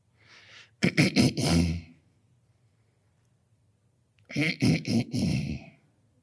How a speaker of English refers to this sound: Whew. I just needed to clear my throat there.